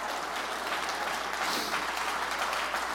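An audience claps hands together in a dense, steady wash of applause that holds at an even, fairly loud level for the whole stretch, with no voices standing out.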